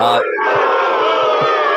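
A loud, rowdy crowd roars and cheers in a sustained, dense wall of yelling and shouting voices that holds steady for the whole stretch.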